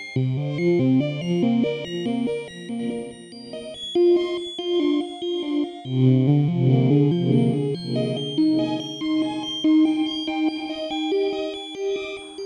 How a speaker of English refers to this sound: What's really fun about this reverb is you can do you can control the wet dry with CV. So let's turn that down, and then we'll put let's put a math slope into there.